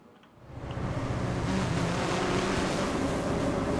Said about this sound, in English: In theory, that drone landing on the roof of the hospital could be carrying anything from medicine to medical supplies.